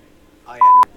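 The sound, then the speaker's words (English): A single loud censor bleep, a flat steady beep lasting about a quarter second, cuts in right after a brief snatch of speech and stops abruptly. “We'll bleep out.”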